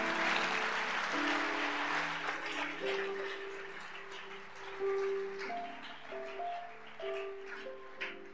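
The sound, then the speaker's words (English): An audience claps steadily in a dense, continuous wash of applause, with sustained musical tones or voices ringing underneath, fairly loud throughout. “If you are clapping, clap well, because we don't have time.”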